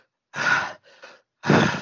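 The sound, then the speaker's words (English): A voice imitates the heavy breathing of a wounded character standing up: two loud, breathy gasps separated by a quieter shaky breath, with no words spoken. “And she stands up, she's, like, breathing heavily.”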